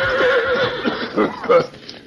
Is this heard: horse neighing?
yes